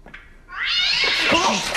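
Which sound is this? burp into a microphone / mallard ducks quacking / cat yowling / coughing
cat yowling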